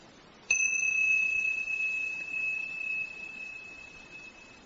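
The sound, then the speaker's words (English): A single meditation bell is struck once, giving a clear, bright tone that rings out and slowly fades over several seconds, heard alone without any voices. “And again, when you hear the sound of the bell, open your eyes in your own time, begin again.”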